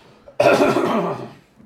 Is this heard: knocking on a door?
no